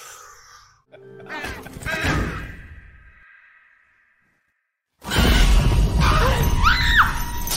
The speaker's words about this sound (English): Yep. That is the incitingest incident of this movie. It's a bird crashing through the window of their living room mid-vlog, which obviously pisses the mom off.